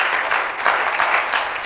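A crowd claps steadily for performers, a dense, crackling wash of many hands at a fairly loud level, with no talking over it.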